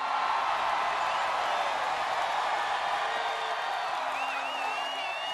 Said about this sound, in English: A.J. Hinch, biggest round of applause.